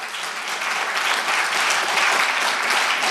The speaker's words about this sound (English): Can we just clap for the mercy of God?